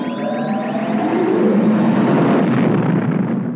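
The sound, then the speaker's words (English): The Falcon spaceship from Star Wars jumping to hyperspace: high whistling tones sweep at the start, then a loud, steady roaring rush with a deep rumble fills the rest, with no one speaking. “I'm a big fan of that Falcon jumps to hyperspace sound.”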